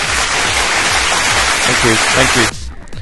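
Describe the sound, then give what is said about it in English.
Loud, dense applause, like a small crowd clapping, fills the first two and a half seconds, with voices talking underneath, then cuts off abruptly into quieter talk. “Round of applause for me for being able to pronounce something vaguely Japanese and vaguely correct.”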